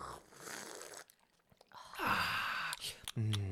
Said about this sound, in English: High definition slurp. Yummy. Oh, that's so tasty. It is very nice. It's like it's drinkable. White chocolate and orangey, and it's not you can't taste that hidden tequila until like afterwards, and you're like, oh, hello tequila.